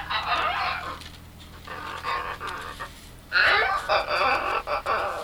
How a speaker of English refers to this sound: That is the macaw. And the macaw are New World parrots with colorful long tails. They are found and native mostly to Central America and Mexico,